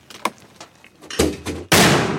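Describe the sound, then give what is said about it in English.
Marines in training firing a mortar: a few faint clicks and knocks, then a hollow, booming thump of a mortar round launching from a metal tube set on a tripod, quickly followed by a louder, sustained blast that roars to the end. “Recently, we watched some Marines train, launching them out of metal tubes set on tripods.”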